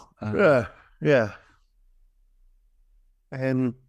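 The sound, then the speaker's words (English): A person yawns aloud: two drawn-out, sighing vocal bursts in quick succession, then a short quiet pause before a third voiced, groaning exhale. “Well, I yawned there.”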